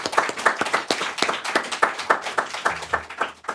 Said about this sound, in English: And I think they deserve a quick round of applause and appreciation.